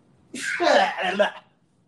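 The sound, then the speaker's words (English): A single sneeze, oddly drawn out and voiced, bursting suddenly and trailing off after about a second, with nothing else around it. “Yeah, I didn't know it was a sneeze.”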